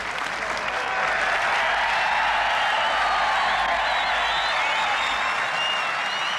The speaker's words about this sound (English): Great reception and huge crowds scampering round this 18th green to get their final views of the third round.